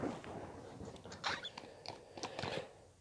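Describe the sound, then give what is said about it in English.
Someone sips a drink, with a quiet run of small wet mouth clicks and swallowing sounds over about three seconds and no talking. “Oh, a little sip of my drink.”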